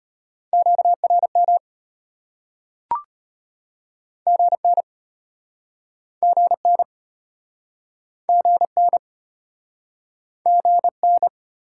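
Fast Morse code at 25 words per minute, sending amateur radio QSO elements in a steady mid-pitched tone, keyed in short bursts of quick dots and dashes separated by brief silences, with one sharp click early on. No voices.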